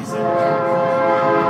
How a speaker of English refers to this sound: Oh, here comes the train.